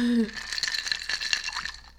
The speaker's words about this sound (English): Ice. Ice clinking needs to be our transition music.